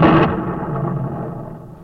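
A loud, sharp crash like a lightning strike bursts out at once, then rolls into a rumbling, crackling roar that slowly fades. No one speaks.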